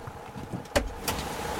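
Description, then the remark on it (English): A car door latch clicks open with a sharp clunk as the driver leans over to open it for a woman walking by the roadside in the rain, followed a moment later by a second softer knock, over a steady rumbling background like rain or an idling engine. “I leaned over and opened the door.”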